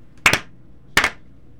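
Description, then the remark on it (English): Two sharp, bright hand claps spaced well apart in a slow, deliberate rhythm, with quiet pauses between them and no talking. “It's a slow clap.”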